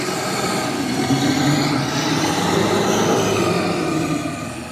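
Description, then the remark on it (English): A loud, guttural growl from a 30-foot-tall, grey-skinned, muscular monstrous beast rumbles steadily for nearly five seconds. It is rough and low with a gritty texture and eases off slightly at the end, with no talking. “As you do so, Sebastian, you hear a loud, guttural growl.”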